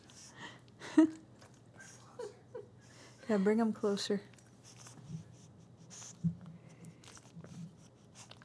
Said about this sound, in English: I hope everyone can hear that adorable puppy sound as he chews on his bone. That's what he does in the morning when he has to get up.